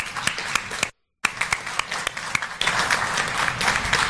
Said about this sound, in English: Okay, and I think we give a round of applause to the people who've served our country.